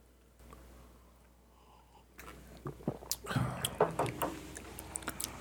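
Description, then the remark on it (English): A sip of an Irish red beer brewed with wildflower honey follows a brief quiet stretch: wet slurping and small mouth clicks come in a quick, irregular cluster, then a swallow and soft smacking. “I'm going to take another sip of see if I can get that honey notes.”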